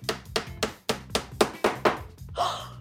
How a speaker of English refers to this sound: The entire can of garbage is the size of a brick, and it's hard as a rock. Woo! Let's drive a nail through it and see what happens. Hammer. Hammer. Nail. Nail.